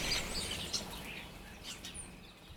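birds chirping at dawn

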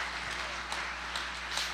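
audience clapping hands

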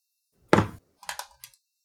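chair breaking

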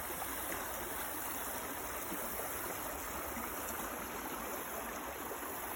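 river water flowing

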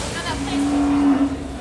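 cattle mooing

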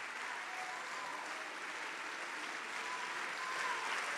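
audience clapping hands

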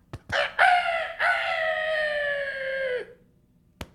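rooster crowing

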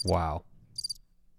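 crickets chirping sound effect

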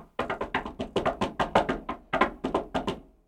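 knocking on wood

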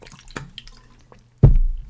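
sipping water

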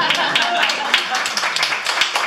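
one person clapping

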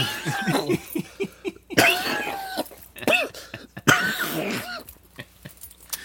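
coughing

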